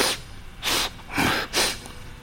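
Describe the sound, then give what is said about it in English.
A voice imitates a creature sniffing as it comes right past: four quick, breathy inhales in a steady rhythm, fairly loud, with no words spoken. “And it comes right past and you can hear it.”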